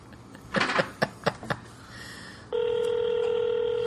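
A phone call being placed: several quick button presses tapped out, followed by a steady, loud ringing tone that holds unbroken to the end.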